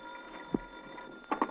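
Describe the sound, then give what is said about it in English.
A telephone rings in a hotel room in short, quick bursts near the end, fairly faint against a steady background hum, with one brief knock-like sound earlier. “To bear me out, the phone was ringing in my hotel room when I got there.”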